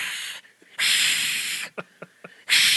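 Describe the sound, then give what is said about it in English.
A voice imitates an angry goose: loud, drawn-out breathy hisses, broken by a few short throaty huffs, then one more sharp hiss. “And their heads, like a goose's head, is like a snake. They're like bird snakes.”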